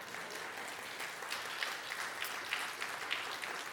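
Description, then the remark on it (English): Steady applause from an audience, a dense patter of many hands clapping at a constant level for several seconds, with no voices over it. “My mom and dad, who are clapping at this time, have just celebrated their 60th anniversary.”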